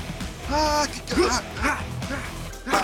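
Several high, yelping dog cries come in quick succession, like puppies yipping and barking, with short gaps between the bursts and a steady background hum underneath.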